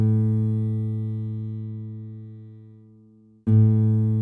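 Two low open notes plucked on an acoustic guitar that belongs to the player's mother: the first rings out and slowly fades for over three seconds, then a second strike sounds sharply and sustains. No voices.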